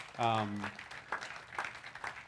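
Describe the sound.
A brief round of applause from an audience: a voiced whoop at the start, then scattered, uneven claps at moderate volume, with some voices underneath.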